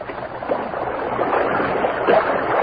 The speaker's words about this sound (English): The Lone Ranger waded into the water knee-deep, secured the bottle, and returned to Tonto's side.